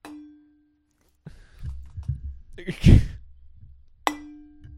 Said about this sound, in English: just knocked a water bottle and it made a cool sound. Wait, let's try again.